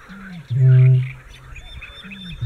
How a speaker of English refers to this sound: And it goes gump, gump. And it just sounds like a big giant water drop dripping. And it's one of the sounds that the bittern makes. And they also make a sound, but this dripping, it doesn't sound like it could come from the throat of anything.